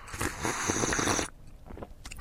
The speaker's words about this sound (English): Just a little sip of tea. Hang on a second.